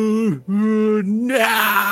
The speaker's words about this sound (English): They say zombies, but they just look like charred men. Their yells and screams echo throughout the hallway.